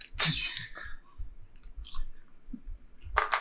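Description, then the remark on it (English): Crunchy snack chewing with irregular bites and crackles, bursts of bright crunching over soft low mouth sounds, moderately loud and without any talking. “No, we already went through me and my snacking.”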